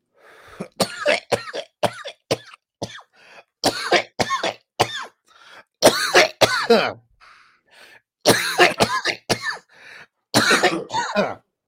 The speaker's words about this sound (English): Coughed in the fucking bong and got a little bit of fucking water on me. Damn it.